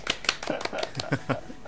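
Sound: applause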